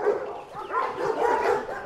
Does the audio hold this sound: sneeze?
no